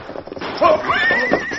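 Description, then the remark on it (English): A quick patter of hoofbeats gives way to a loud, wavering neigh with a rising, then sustained high pitch, as the horses of the Lone Ranger and Tonto gallop and whinny, riding around a bend in the trail toward some boulders. “The masked man and Indian rode around the bend and were nearing the boulders when...”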